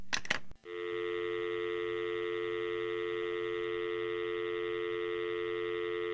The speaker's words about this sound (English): The telephone was hooked to a cord that plugged into the wall. When you picked up the receiver, which was also attached by a cord, there was a dial tone to tell you that it was okay to make a call.